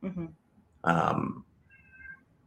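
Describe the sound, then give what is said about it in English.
A cat lets out one loud meow lasting about half a second, preceded by a brief murmur of voice and followed by a faint, thin tone. “My cat is here.”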